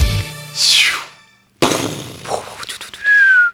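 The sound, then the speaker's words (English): Whistling fireworks shriek and fade, broken by a sharp bang and a scatter of crackling bursts before another high whistle rings out, loud. “I'm Trevor Tortomasi with some fireworks.”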